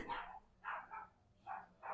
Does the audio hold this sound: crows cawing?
no